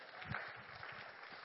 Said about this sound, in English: Let's go ahead and praise God for it. Let's clap. Let's celebrate.